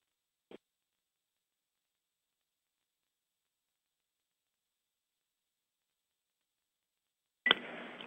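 A conference call phone line cuts out: a brief click, then about seven seconds of dead silence before a sudden loud burst of harsh, crackling line noise returns.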